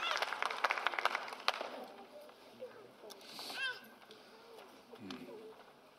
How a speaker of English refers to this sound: You know what's really cool is that you guys can clap when I preach and it's honoring, but I can still have my ribbon on.